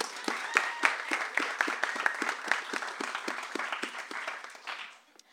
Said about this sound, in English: So let's have a round of applause for all of them.